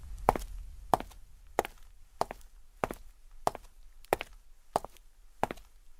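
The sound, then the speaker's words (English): Steady footsteps of a person walking, about nine even steps at a relaxed pace, each a crisp thud with no talking over them. “We'll play you some footsteps.”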